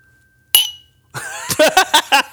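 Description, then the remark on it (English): A single bright clink of glasses raised in a toast rings out and fades, followed after a short pause by a quick series of ringing, tone-like pulses, fairly loud. “I'm going to smash this glass if I keep going.”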